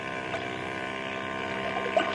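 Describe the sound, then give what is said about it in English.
A motorboat engine drones steadily across the water, a constant hum with a faint rise in loudness toward the end. No one speaks. “look through these night glasses and see if that's the same boat.”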